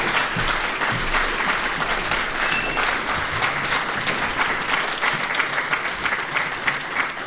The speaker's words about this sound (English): We can have a round of applause for these two candidates. Thank you.